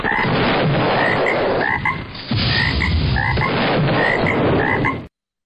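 A dense chorus of frogs croaks loudly and continuously, many overlapping calls forming a thick rhythmic din, with a brief dip midway before the chorus swells again.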